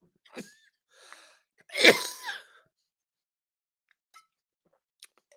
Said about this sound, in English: I made it pretty much the whole show without coughing until the end.